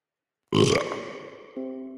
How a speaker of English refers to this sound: Oh, I love that noise. On the twisted. So there's no carbonation. So my burps are almost non-existent.